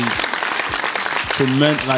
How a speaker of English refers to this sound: but to say that 12,000 times people actually went to listen to the shit I'm saying, that is fucking amazing. So give you guys a round of applause.